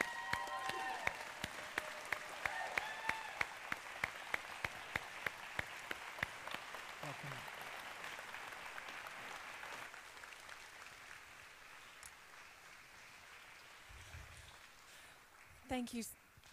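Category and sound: crowd, audience standing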